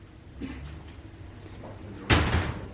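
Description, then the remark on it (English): A heavy pub door in Smithfield bumps and rattles faintly as it is opened, then closes with a loud thud near the end, set against a low, steady hum. “You open the door, you turn the alarm off, you get the ice, and you get your float into the till.”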